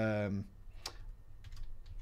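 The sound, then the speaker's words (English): A brief voiced sound opens, then a few sparse, sharp keyboard clicks follow at irregular intervals, fairly quiet over a low background hum. “Oh, God, I'm not even typing.”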